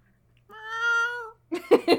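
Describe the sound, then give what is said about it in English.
A person imitates a cat with one long, drawn-out meow, clear, followed by a few short bursty vocal sounds. “No, I'm just very good at cat noises.”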